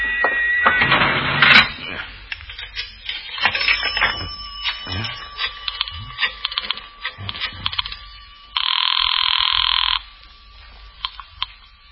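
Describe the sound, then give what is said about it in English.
A rapid series of clicks and taps, like buttons being pressed as a number is dialed on a public telephone, followed by a single steady electronic ringing tone lasting over a second, then quiet. “Where's the nearest phone? There is a public telephone over there”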